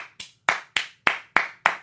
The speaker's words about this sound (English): And then also, I'm just going to give a round of applause here real quick.